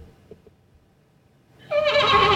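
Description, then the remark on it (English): After a quiet pause, a man imitates a horse's whinny by blowing into a beer held to his lips, making a loud, wavering, bubbly neigh that starts abruptly and holds steady until the end. “So could you know that horse sound that they can make, like.”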